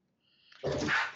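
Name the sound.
dogs barking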